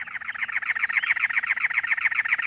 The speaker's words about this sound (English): In late April, in the Arizona desert, it's already over 90 degrees by 11 a.m., and the mercury is still rising. A cactus wren sings, perched atop a many-lobed cactus.